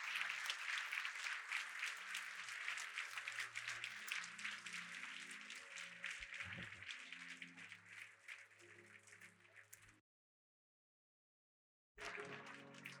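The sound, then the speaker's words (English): Steady, dense applause from a large crowd of people clapping in praise of the Lord, loud and sustained for about ten seconds, then a two-second silence before the clapping resumes. “And if you know that God has done it, just give the Lord a hand clap of praise even right now.”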